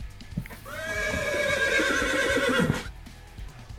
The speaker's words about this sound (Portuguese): Esse Bronco já passou, como foi. Como fala? Foi. Relinchou mais alto, né?